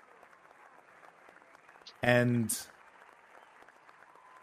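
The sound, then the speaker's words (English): Crowd noise murmurs throughout, then a sudden, loud half-second burst of cheering with clapping rises from the crowd before fading back into the steady background chatter. “You hear just behind suddenly cheers and clapping.”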